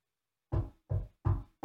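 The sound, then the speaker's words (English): Three firm, evenly spaced knocks on a door, low and thudding, each with a short resonant decay, followed by the start of a fourth. “A knock, knock, knock on the door.”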